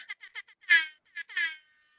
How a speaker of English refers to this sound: Yes, all the air horns for Robert Gay.